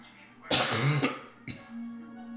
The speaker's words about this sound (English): Enjoy that nice cough right into the microphone.